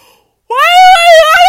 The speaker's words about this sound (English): Why am I yawning?